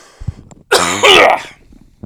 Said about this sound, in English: Can you edit the sound for when you cough into like a squeak or something like that?